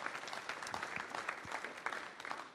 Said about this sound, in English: Come on, we got to give a round of applause to our God.